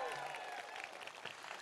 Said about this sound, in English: give him a huge big round of applause.